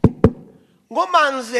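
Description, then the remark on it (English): Two sharp, loud knocks on a house door in Switzerland in quick succession, as a visitor arrives, followed by a short pause before a person starts talking. “When I knock on his”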